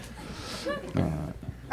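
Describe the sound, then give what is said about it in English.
A person imitates a monkey: a short, rising hooting call followed by a louder, rough, throaty screech, all within under two seconds. “We've got a monkey on the floor.”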